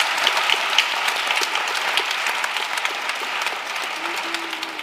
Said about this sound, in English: Ladies and gentlemen, we've come to the end of this session. Please give our panel a big round of applause.